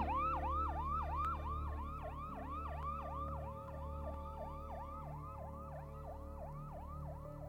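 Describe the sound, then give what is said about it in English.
An ambulance siren wails in a rapid, continuous yelping pattern, loud, over a steady low engine rumble, with no voices present, as paramedics arrive at the scene. “paramedics arrive at the scene just in time to see Vince crawl his way out of the bus”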